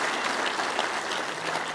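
A crowd giving a round of applause to the men and women at the God Behind Bars campuses, with dense, steady clapping that stays loud and even throughout and has no break or voices on top.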